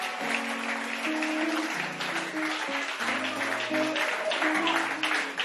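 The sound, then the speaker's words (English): An audience at a meeting claps steadily for several seconds, a dense, continuous patter of many hands with sustained low musical notes humming underneath. “Can you clap your hands?”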